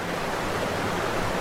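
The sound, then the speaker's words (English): The Great Falls of the Passaic River in Paterson, New Jersey, crash down 77-foot-tall basalt cliffs in a steady, unbroken roar of rushing water, a dense hiss that fills the whole moment at even loudness, with no voices. “Torrents of roiled water cascade down its 77-foot-tall basalt cliffs, sending a swirling mist of spray skyward through the craggy chasm.”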